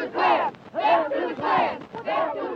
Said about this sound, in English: There were shouts going back and forth. The Klan was screaming racial epithets, and people were saying, we're just, you know, anti. Yeah, there were slogans and screams going back and forth. So that was. We're hearing the audio from that day.